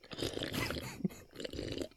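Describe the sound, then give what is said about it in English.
Someone noisily sips a drink, wet slurping in two bursts separated by a short pause, fairly loud and breathy, with no talking. “So rudely sipping in the background was the magnanimous, always lively, beautiful, gorgeous ….”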